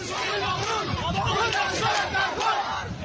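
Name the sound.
protest crowd chanting slogans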